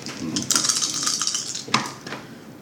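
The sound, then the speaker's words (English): Three dice, rolled in a game for an attempt to repair a communications system and totaling 15, rattle and clatter across a hard tabletop in a quick burst of small clicks, ending with one sharper knock as they settle. Fairly loud, with no voices. “Can I make a roll for repairing the communications system?”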